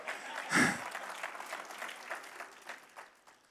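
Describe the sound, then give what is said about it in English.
An audience claps together in a dense, steady patter of many hands, with one louder burst early on before the applause gradually thins and softens toward the end. “And what, you can clap.”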